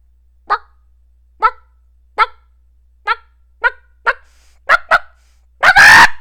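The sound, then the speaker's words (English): A voice imitates a clucking chicken: a series of short, evenly spaced squawky clucks that speed up slightly, ending in a longer, louder screech. “That was a chicken.”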